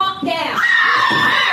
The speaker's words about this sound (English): Okay. Can anybody hear that scream? Give me a one if you heard it.